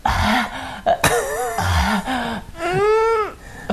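Deep, heavy breathing in a radio studio during an interview, each long breath voiced into a low groaning moan that rises and falls, with a few drawn-out exhales and no other talking.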